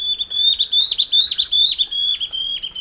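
A rapid series of high, whistled antbird notes repeats steadily, each note sliding slightly, over a faint rainforest background with no voices.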